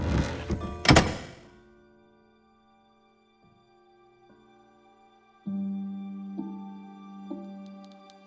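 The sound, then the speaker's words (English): A door shuts with a single solid thunk, its dull echo fading into near silence before a low, steady hum swells up in the background. “She dimmed the lamp and closed the door.”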